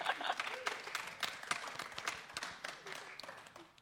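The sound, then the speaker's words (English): A round of applause from a group for a team that answered a quiz question correctly, many hands clapping in a dense, steady patter that holds throughout, with some faint voices mixed in beneath the clapping. “A round of applause, yep.”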